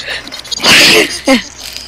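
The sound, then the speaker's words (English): A small sneeze from a puppy: a breathy, hissing burst followed a moment later by a shorter, squeakier snort, with no talking around it. “Bless you, puppy.”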